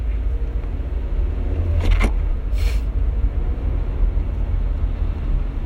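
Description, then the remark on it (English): A car drives in traffic in Saskatoon with a steady, low road-and-engine rumble throughout, broken only by a couple of brief clicks and a short hiss partway through. No one speaks. “I'm gonna drive so that it's faster, even though it's probably not faster because of the fucking godforsaken Saskatoon 449 traffic.”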